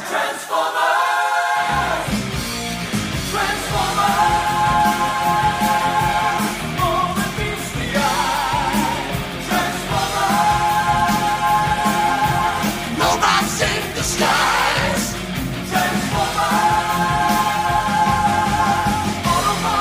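A loud, driving heavy metal rendition of the Transformers theme song, with distorted guitars, pounding drums and a sung melody over a dense, constant wall of sound.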